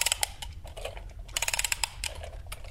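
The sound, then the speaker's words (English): Crisp mechanical clicking from an old-school wind-up alarm clock being wound, a dense run of small ticks and ratcheting clicks at an uneven pace, with no voices over it. “So then for the very young listeners who never worked with these kinds of old school clocks, you have to wind them up.”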